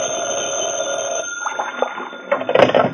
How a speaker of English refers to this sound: I'd gone back to my office to cool my heels for a while when the phone rang.